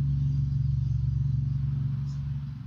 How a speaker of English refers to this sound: Oh, that's a fucking meaty engine.